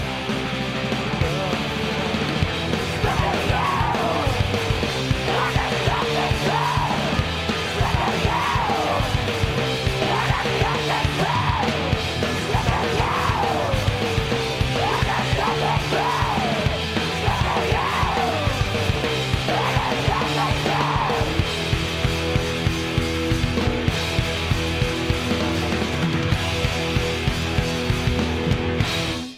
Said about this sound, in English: Wild. Like wild screams, mm-hmm.